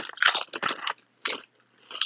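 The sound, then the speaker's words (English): Crisp crunching of seaweed snacks being bitten and chewed, several bursts of brittle crackling separated by short pauses, fairly loud with no talking. “It is seaweed snacks.”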